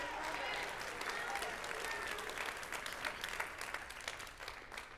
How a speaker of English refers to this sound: Can we give God a hand clap of praise in the house of the Lord today? Hallelujah, Lord.